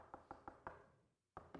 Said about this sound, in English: The church at Laodicea. Behold, I stand at the door and what? Knock.